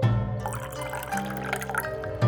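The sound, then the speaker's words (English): Sake pours steadily from a carafe into a glass for about two seconds, a trickling fill over a low sustained musical bed, with no talking. “Ninigi poured his father a glass, but Mimi ignored it.”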